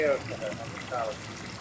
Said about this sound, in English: it's the room with all the water rushing out of it